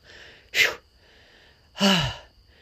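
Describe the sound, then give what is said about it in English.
A quick, sharp breath drawn in, then after a pause a longer, louder breath pushed out that turns into a voiced sigh dropping in pitch, taken as part of a prayerful breathing exercise. No talking. “For some reason, I'm much better at breathing out than I am breathing in.”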